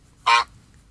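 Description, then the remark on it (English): A single short, loud honk like a goose or duck call, lasting under a quarter second, bright and nasal, standing alone against a quiet low background hum. “I've been quacked, okay. And you've been quacked. Or honked.”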